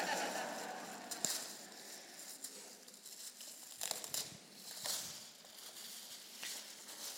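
Wrapping paper on a well-wrapped gift box rustles and crinkles steadily, broken by several sharp tearing rips, a fairly quiet stretch of paper being torn open and crumpled.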